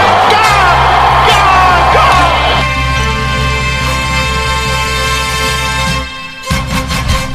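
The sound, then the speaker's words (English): A large Test cricket crowd erupts in loud, sustained cheering and yelling as Siddle takes a hat-trick on his birthday, a dense roar that holds steady for several seconds before breaking into scattered whoops near the end. “Crowd cheers.”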